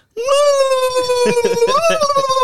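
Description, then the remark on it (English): A person imitates a roaring bear with one long, loud vocal cry, held steady for about two seconds and rising slightly in pitch near the end, with no other talk. “Have you voiced the bear and Pingu now?”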